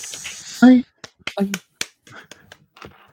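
Someone attempts a hand clap: a loud, sharp clap cracks out once, followed by a softer second smack and a few scattered clicks, with brief vocal sounds around them.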